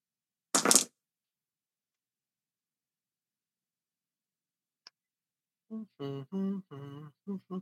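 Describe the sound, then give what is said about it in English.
A quick, bright clatter of dice tumbling for under a second, rolled for a tech roll in a tabletop game to unlock a lock, then near silence with one faint tick before a person starts talking. “That is 6 successes. Dang it, and a 5 on my extra dice.”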